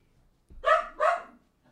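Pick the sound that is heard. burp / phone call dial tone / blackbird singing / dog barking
dog barking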